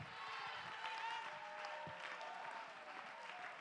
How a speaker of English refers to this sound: Somebody clap your hands and lift your voice and let the devil know, I ain't going anywhere.